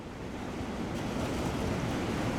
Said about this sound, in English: The sea seems a bit rough